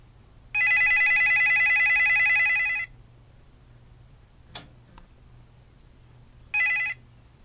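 A telephone ring tone sounds as a call is placed to a guest for a phone interview: one long steady ring of about two seconds, a pause with a faint click and low hum, then the next ring begins.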